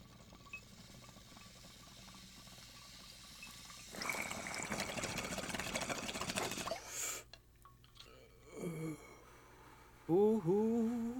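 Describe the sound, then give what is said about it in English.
A packed bong is lit with a lighter and smoked: it bubbles and gurgles steadily for about three seconds after a quiet stretch, then stops with a sharp click, followed by a few short voiced exhales and a louder vocal sound at the end. “But with that being said, I have a bong packed right here”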